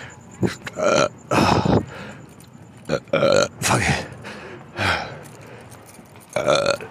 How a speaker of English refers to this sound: Fucking burping and shit.